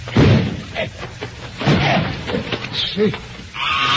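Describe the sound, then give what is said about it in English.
A locked door with a spring lock is forced in with a series of heavy thuds and splintering bangs, accompanied by strained grunts and vocal noises over a rough, noisy background. “There's nothing for it but to bust in the door.”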